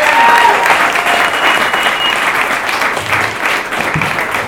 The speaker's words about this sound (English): All right, everyone, let's get our last guy up here. Everyone, give it a round of applause